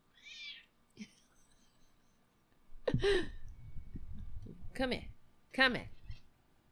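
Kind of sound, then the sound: animal, cat meowing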